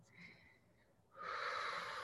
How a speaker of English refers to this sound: Sigh, stretch, yawn. Exhale. Breathing deeply, breathing fully.